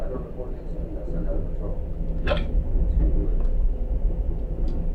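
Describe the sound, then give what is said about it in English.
A single sharp hiccup cuts in about halfway through, brief and abrupt, over a steady low rumbling background with a few faint clicks. “There you go, hiccups already.”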